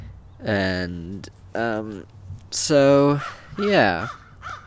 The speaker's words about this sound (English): And that bird won't be quiet